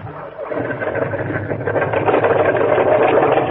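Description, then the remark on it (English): A small boat motor, on a boat held in the surf, chugs into life and revs up, its buzzing drone growing louder and steadier over a few seconds, with no one talking. “Hold it into the surf till he gets the motor started.”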